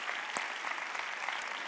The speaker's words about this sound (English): Come on, can we just give God another hand clap for that? It's awesome.